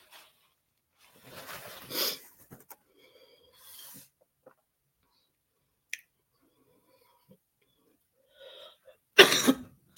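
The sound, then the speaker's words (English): Several coughs and raspy throat-clearing with pauses between, the sharpest burst near the end, plus a few faint clicks in the quiet gaps, from a person choking on dust. No talking. “Most people sip on cough medicine.”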